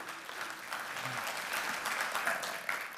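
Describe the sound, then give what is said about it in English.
A church audience applauds steadily for about 120 members standing to be acknowledged, a dense wash of many hands clapping at an even, sustained level with no pauses or voices standing out. “Let's clap for them.”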